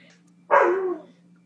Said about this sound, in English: My dog is going to bark this whole time.